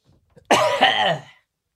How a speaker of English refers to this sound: Everybody, there's no way around this. You can hear it. I got to clear my throat. I'm so sorry.